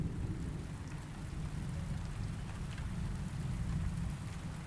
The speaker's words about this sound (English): The night that we arrived at the campground in the Adirondacks, it was cold and raining.